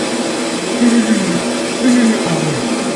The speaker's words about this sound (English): Now, dry under the hand dryer. There we go.